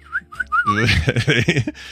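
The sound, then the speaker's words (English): Three quick, chirpy whistled notes sweep upward like a bird's call, then a loud, wavering burst of voice takes over for the rest of the moment. “News is brought to you by the birds circling over my head going...”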